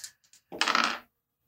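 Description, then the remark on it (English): Dice rattle briefly, a few light clicks followed by a half-second burst of clattering as they tumble across a hard surface, fairly quiet, then silence. “All right, I'm going to roll dice here.”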